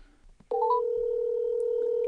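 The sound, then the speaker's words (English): A phone being dialed on speaker for a live call to a woman: a few quick electronic beeps after a faint rustle, then a loud, steady phone-line tone that holds without a break to the end. “Can we call her and put her on speakerphone right now?”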